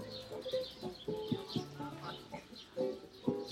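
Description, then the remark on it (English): Birds chirp in quick, repeated bursts throughout along a canal in Kreuzberg, Berlin, fairly clear against a steady backdrop of plucked, melodic Django-esque guitar playing and soft outdoor ambience. “You can hear the birds.”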